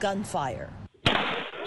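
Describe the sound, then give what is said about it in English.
A voice calls out briefly, then after a short silence a loud, sharp gunshot bursts in, trailed by harsh, distorted noise, captured by a Ring doorbell camera outside a home's front door. “gunfire.”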